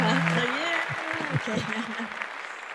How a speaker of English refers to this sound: This is where I push the applause button